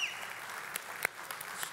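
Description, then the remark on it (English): An audience applauds softly to welcome people from other nations: a steady wash of clapping with a few sharper, louder claps standing out, and no voices heard. “Let's give them all a clap and welcome them.”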